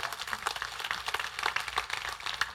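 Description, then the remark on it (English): A crowd applauds with a steady, dense wash of many hands clapping at once, holding an even, fairly soft level for a few seconds with no voices on top. “Hey, that's worth an applause, huh?”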